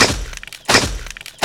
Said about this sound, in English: That is a wet crackle crunch, and it is what every crotch shot needs to be spectacular.